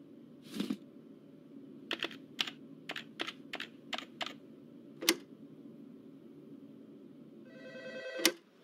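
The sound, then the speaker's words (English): A brief electronic telephone ring sounds near the end as a phone call is made, a bright buzzing tone lasting about a second, after a run of sharp keyboard clicks in otherwise quiet. “Can I make a quick phone call?”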